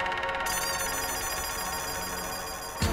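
telephone ringing

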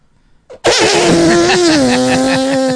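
fart

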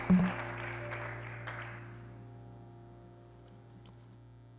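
audience clapping hands

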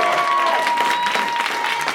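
audience applause

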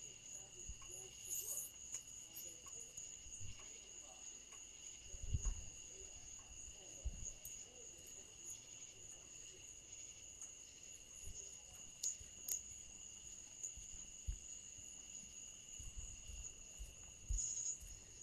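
crickets chirping at night

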